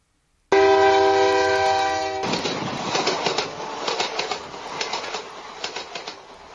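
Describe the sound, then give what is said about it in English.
A loud train horn blares steadily for under two seconds, then gives way to the rhythmic, hissing chug of a moving steam train that keeps pulsing evenly to the end. “To start the train, say next.”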